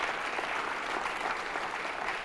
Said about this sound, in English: Now clap your hands and thank the Lord for that. That's what you do.